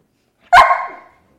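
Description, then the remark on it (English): A single loud dog bark rings out sharply and trails off quickly, with no voices around it. “The dog tells me what to do.”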